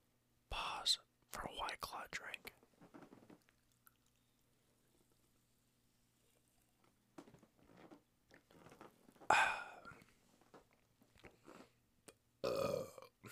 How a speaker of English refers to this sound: and White Claw burp.